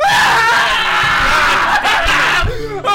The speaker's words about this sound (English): I got my Philips Hue scream lamp on. Scream lamp? Yeah, dude. It screams. It's just a recording of me screaming.